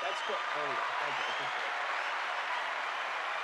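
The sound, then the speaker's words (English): A steady wash of crowd applause played as a sound effect, dense and continuous throughout, with a voice briefly speaking over it near the start before the clapping carries on alone. “All right, that's enough applause for you.”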